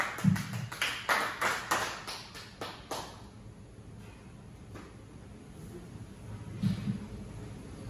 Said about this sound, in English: Put your hands for it! Make some noise! Yeah. Let's go! All of you guys raise in the roof. Start clapping your hands right now